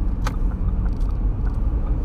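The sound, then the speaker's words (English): A steady, loud low rumble of road traffic passing outside fills the scene, with engine drone continuing throughout and a brief sharp click near the start. No voices are heard. “I don't know what's going on with this traffic out here today.”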